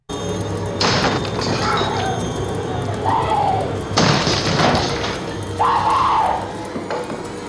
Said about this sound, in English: Here's Johnny, Jack Nicholson, breaking down the bathroom door. Oh, man, that is a freaky one.